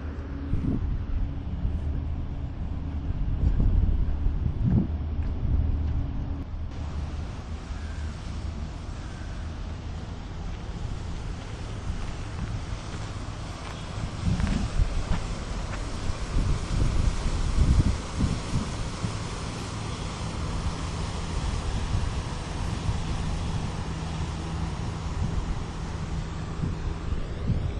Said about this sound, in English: That was a small boat that just went by, boatinparis.fr, pulling into the Canal Saint-Martin, Porte de Plaisance de Paris Arsenal.